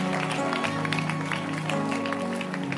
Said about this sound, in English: Clap your hands for the night school. Really, it was nice, eh? You loved it. Then clap your hands for Jesus.